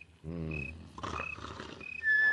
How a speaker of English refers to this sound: Oh, the way … snores. Wonder he does not awaken himself.